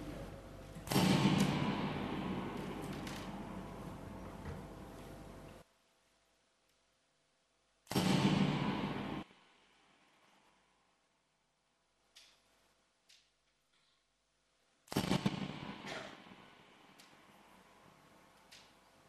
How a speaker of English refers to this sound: Again, I'll play you three balloon bursts, and you'll hear them each time. And each time you hear a different separate sound in each balloon burst, that's it doing a circuit of the dome.